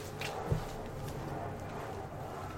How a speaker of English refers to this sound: Max is laying down, so maybe I will close the door for you guys. Want to hear some footsteps?